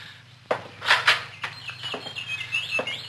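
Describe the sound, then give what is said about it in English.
A collection of canaries in a home's bird room chirp in thin, high twitters through the background, while several sharp thumps like footsteps land in the foreground over a steady low hum. “Quite a collection of canaries you've got here.”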